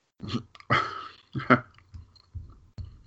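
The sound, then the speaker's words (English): Crunching of someone chewing almonds from Planters mixed nuts, with several loud, irregular bites early on that fade into softer, quieter chews toward the end. No one speaks. “Sorry, I've been chewing almonds, so.”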